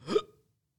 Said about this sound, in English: Sorry. Again, I hiccuped and burped.